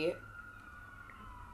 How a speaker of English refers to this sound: Sirens.